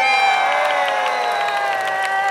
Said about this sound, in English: Thank you. Got a cheer.